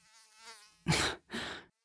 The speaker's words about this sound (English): There is a mosquito in the pillow fort. Are you kidding me?